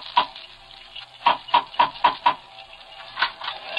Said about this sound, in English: What a shame it has to be raining like this.